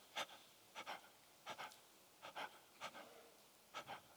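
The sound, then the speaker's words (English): A person imitates the quick, shallow panting of people who fill up with carbon dioxide and do not exhale well: a string of short breathy huffs in loose pairs, soft, with brief pauses between them and no speech. “So they kind of fill up with carbon dioxide right up to the lip. And then their breathing spiritually looks like...”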